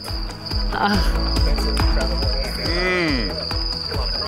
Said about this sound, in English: Plus, the cricket infestation in Nevada. Ew! Yeah, it'll make your skin crawl.